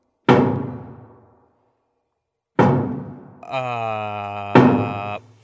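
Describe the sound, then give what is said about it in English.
Loud, heavy knocks on a door, two booming thuds a couple of seconds apart, then a third knock over a steady, drawn-out tonal sound. “Sorry, that's my door.”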